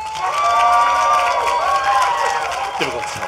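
A live audience applauds and cheers loudly and steadily for a few seconds to vote for which side of an argument is in the right, with overlapping shouts and whoops rising from the crowd.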